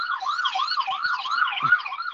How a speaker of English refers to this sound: I'm waiting for the sirens to go by.